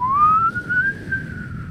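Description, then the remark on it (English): A person whistles a single long, rising and wavering tone imitating a police siren, fairly loud over a low background rumble, with no talking. “Is that supposed to be a police siren?”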